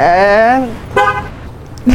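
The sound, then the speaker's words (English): A car horn chirps as the car locks: a longer honk, then a shorter toot, and a brief final beep, all fairly loud with no talking. “Why are you locking your car?”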